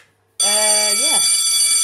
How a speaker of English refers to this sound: Hang on. What's that noise? Oh. What is it? Oh, you know what it is. It's a theatre bell.